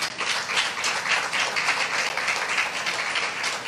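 An audience claps together in a steady, dense wash of applause that holds at an even, fairly loud level for several seconds, with no voices over it.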